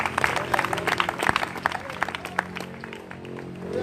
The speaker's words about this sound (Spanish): Ahora aplaudamos honrando al Padre, al Hijo y al Espíritu Santo.